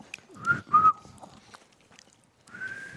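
attempted whistling

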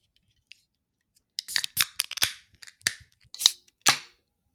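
beer can being opened

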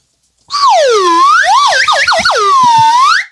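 slide whistle being played

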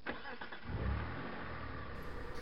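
car engine accelerating

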